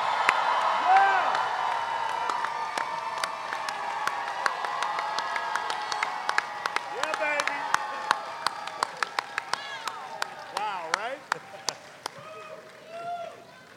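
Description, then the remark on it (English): A crowd applauds and cheers loudly as actress Ming-Na Wen, Fennec Shand in The Mandalorian, is welcomed, with dense clapping, rising whoops and excited shouts, then the clapping thins into scattered individual claps as the ovation dies down. “Give it up for Ming-Na Wen, everyone!”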